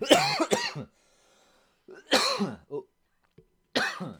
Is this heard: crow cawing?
no